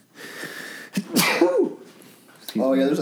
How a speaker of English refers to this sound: Jesus Christ! It's a dainty sneeze.